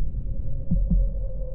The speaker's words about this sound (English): But for many minutes, the heart beat on with a muffled sound. This, however, did not vex me. It would not be heard through the wall.